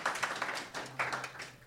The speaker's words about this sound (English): Thank you, put them here. A round of applause for